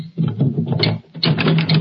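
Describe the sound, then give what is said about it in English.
A dry papery rasping as a paper cutter's blade slices through paper in two quick strokes separated by a brief pause, with crisp crackling throughout and no voices. “This paper cutter will do.”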